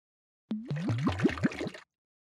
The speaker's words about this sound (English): Are you near a water source? I have a bottle of Voss in the car. Pour it over you